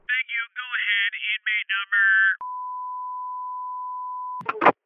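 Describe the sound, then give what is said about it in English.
A collect telephone call connecting through a switchboard operator: quick bursts of warbling electronic tones, then one long steady beep held for about two seconds, ending in a brief crackly burst. No one speaks. “I just need to know if you'll accept all applicable charges for this phone call.”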